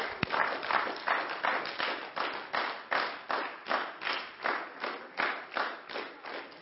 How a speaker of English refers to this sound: Well, are our kids ready for Kids Life? Yes. Are we ready? Come on, let's clap them out.